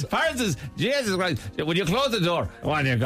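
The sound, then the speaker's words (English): A parrot named Frankie talks in a strong Irish accent, delivering loud, shrill, sing-song phrases in four quick bursts with brief gaps between them. “parrot Frankie, who also has an Irish accent, a very strong Irish accent”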